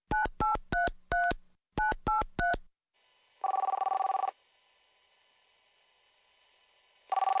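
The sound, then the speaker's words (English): A phone number is punched in as seven quick touch-tone beeps, four then three, followed by a faint line hum and two long buzzing rings as the call goes through. No one speaks. “I call him right now, I'm making all I want, hombre.”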